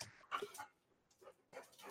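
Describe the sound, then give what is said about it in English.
A dog lets out a few short, yippy barks in separate bursts, fairly quiet, with brief pauses between them and no one speaking. “be a good dog.”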